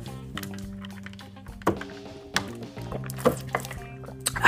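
Water is poured into a cup, a steady liquid gurgle with a few sharp knocks and clinks of the vessel, and no one talking.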